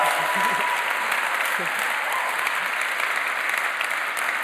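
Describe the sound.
A crowd applauds steadily, a dense, even wash of clapping that holds at a constant loud level throughout, with a few faint voices and cheers mixed in underneath.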